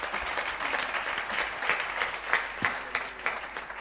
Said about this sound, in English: So just give a round of applause to our pastor.